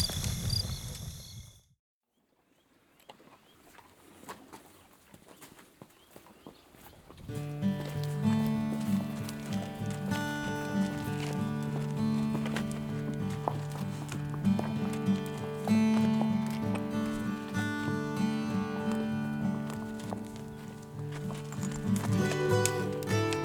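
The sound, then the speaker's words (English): A horse shifts and snuffles, pushing its snout into a hand at the county fairgrounds outside Marfa on a Saturday morning, with soft hoof knocks and breathy snorts, before a steady, droning tonal backdrop swells up and carries on beneath the movement. “I think the horse likes me, if that's what sticking the entirety of his cavernous snout into my hand means.”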